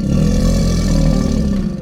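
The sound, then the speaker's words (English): A crocodilian's deep closed-mouth rumble, a loud, steady low drone with a growling, engine-like texture that holds for nearly two seconds before easing off slightly at the end. “Actually, in crocodilians, some of the sounds that to us would sound most like a roar, they're kind of a rumble.”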